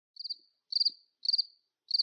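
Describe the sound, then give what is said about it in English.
Crickets chirp in a steady rhythm, each chirp a quick burst of three or four high pulses repeating roughly twice a second, clear against an otherwise silent background with no voices. “I said for the love of birds, not crickets.”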